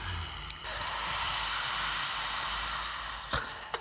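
A steady, breathy open-mouthed exhale lasting a few seconds, like fogging up a pane of glass, fairly soft, ending with a couple of short clicks.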